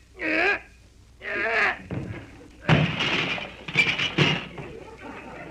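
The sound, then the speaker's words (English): Two short straining vocal grunts as people push a stuck house door, then a loud crash as it bursts open, followed by a jumble of clattering, clinking debris that trails off. “I guess we can get through the door all right. Just help me push it a little.”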